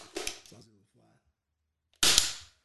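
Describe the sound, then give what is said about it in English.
A fly that keeps landing on the microphones is swatted and killed with two sharp, loud smacks, the second one harder and ringing briefly, a short muttered voice between them. “Let's knock him out real quick.”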